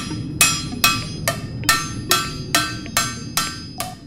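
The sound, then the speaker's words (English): At the pan maker Blue Skillet, a hand hammer beats out the deformed edges of a heated, pressed metal pan in a steady rhythm, about eight sharp, ringing blows over a low rumbling background, with no talking. “Once the pan is pressed, then there's still some deforming that occurs around the edges, and so we heat it up and then hammer that out by hand.”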